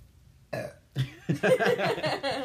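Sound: burp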